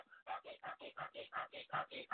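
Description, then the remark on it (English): A person demonstrates the rapid, shallow panting of stressed breathing: about nine quick, even breaths in a steady, fast rhythm, each a short breathy huff with no talking in between. “When your mind is running a mile a minute, your breath is like this.”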